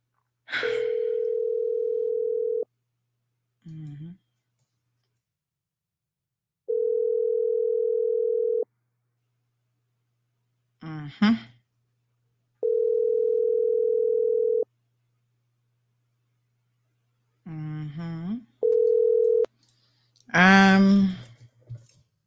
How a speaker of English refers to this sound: Hold on. I'm gonna make a little phone call, you know.